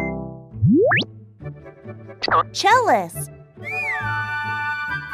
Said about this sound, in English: Cat. Cat. Cat.